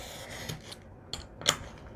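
Scissors snip through thin, papery material in a few crisp cuts, with soft rustling and rubbing between the snips and a sharper final cut near the end.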